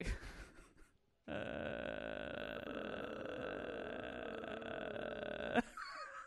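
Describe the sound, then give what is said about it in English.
A voice imitates the long, flat groan of Tina Belcher from Bob's Burgers, a steady droning 'uhhh' held loudly for about four seconds after a brief pause, then cutting off abruptly. “You heard me start to do it. Yeah. That's the Tina Belcher.”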